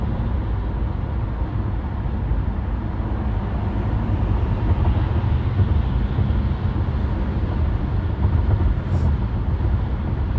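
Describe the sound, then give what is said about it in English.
A steady, loud low rumble of a car driving, heard from inside the cabin, with continuous road and engine noise holding even throughout and no distinct braking sounds standing out. “It's so hot in this car. Yeah. Turn that off. Hit these brakes a little bit.”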